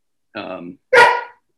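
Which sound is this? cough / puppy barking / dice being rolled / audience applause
puppy barking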